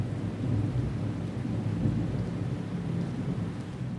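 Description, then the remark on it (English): Heavy rain pours down in California in a steady, dense hiss, with a deep continuous rumble underneath like thunder. The sound stays fairly even throughout, and no one speaks. “Not a good sign, but hopefully the current heavy rainfall we're getting now in California, at the time of this recording, will help replenish Lake Shasta and the other reservoirs throughout California in 2023.”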